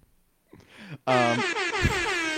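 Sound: air horn sound effect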